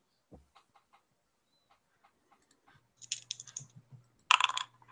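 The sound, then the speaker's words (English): Dice rolling: a few light clicks and taps, then a rattling clatter and a sharp, loud burst of tumbling as the dice land, with a low steady hum underneath. “I'm going to go ahead and roll it. Come on, dice.”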